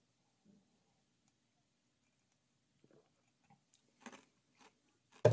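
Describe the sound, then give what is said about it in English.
Someone takes a quiet sip of a drink, with soft wet mouth clicks and a swallow, ending in a sudden louder knock. “And yeah, get in your questions while I take a sip.”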